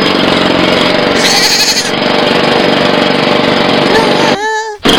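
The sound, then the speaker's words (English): A goat bleats in a short, wavering cry near the end, over a loud, steady mechanical rattle like a jackhammer or engine that runs throughout. “Is someone using your power to jackhammer on a fucking goat?”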